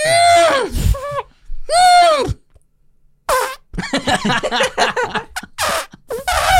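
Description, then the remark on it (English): A voice makes two squealing, trumpet-like calls in imitation of a baby elephant, each rising and then bending down in pitch. After a short pause, people start talking and laughing over each other. “But I think elk, they're making similar noises, although a little baby elephant's more like... It's more like...”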